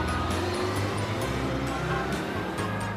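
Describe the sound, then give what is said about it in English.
A bus drives along the road, its engine rumbling steadily with a constant roar of road noise and occasional faint higher clatter, loud throughout. “When school is done, Pete rides the bus home.”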